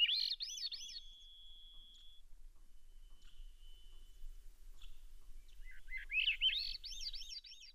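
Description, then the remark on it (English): A Swainson's thrush sings a fairly plain song: a short fluttering phrase with a held whistle, a quiet pause, then a clear upward-spiraling phrase. Distinct, with no voices. “Each Swainson's thrush has its own unique individual variation on the song.”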